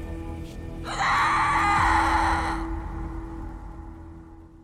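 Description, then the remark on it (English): A single loud, shrill scream bursts out after a second and holds for about a second and a half, then fades into a low, moaning tail over a steady background hum, on Halloween night 2004 at a house in Napa Valley. “The story she has for us tonight happened on Halloween night in 2004, when one house in Napa Valley was transformed into a real-life horror movie that began with a terrifying, blood-curdling scream.”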